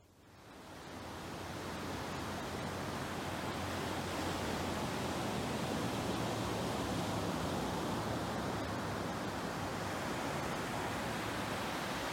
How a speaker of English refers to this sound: What did you hear? Did you hear the ocean? Good job.